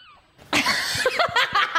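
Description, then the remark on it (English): A seagull at Bondi Beach, Sydney, lets out loud, harsh squawking calls while stealing a chip from a child, a rapid run of raspy, laugh-like cries after a faint high call at the start. “this is a seagull stealing a chip from a child that is here on vacation.”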